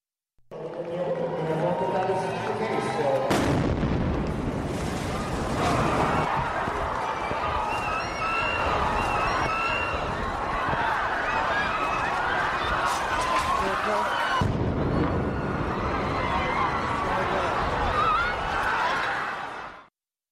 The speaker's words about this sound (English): The following is a live recording made during the Boston Marathon. You will hear the first bomb detonating, then, 12 seconds later, you will hear the explosion of the second bomb.